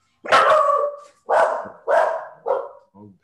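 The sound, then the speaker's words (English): A female dog barks four times in quick, loud bursts, the first one longest, followed by a brief softer yelp at the end. The barks stand alone with no talking. “Why is the dog barking in the middle of the podcast?”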